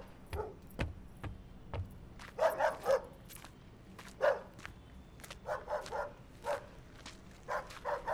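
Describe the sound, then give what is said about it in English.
A dog barks repeatedly in quick, irregular bursts, some yappy and clustered together, with brief pauses between volleys over a low background hum. “You know, Zed keeps saying we should get a dog here, but if this is what they're like, then that cord's too short.”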